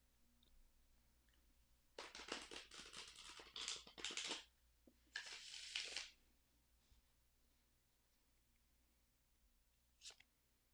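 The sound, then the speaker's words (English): Two bursts of crisp, rapid riffling as a Tarot of Pagan Cats tarot deck is shuffled, with a short pause between them; a single faint snap follows a few seconds later as one card is drawn. “We are using the Tarot of Pagan Cats deck today, so I'm going to shuffle and draw a card.”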